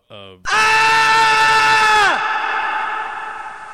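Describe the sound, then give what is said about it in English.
A brief vocal lead-in bursts into a loud, sustained scream held for about two seconds, its pitch dropping off at the end, followed by a long echoing tail that slowly fades away. “The echo. A lot of echo on it.”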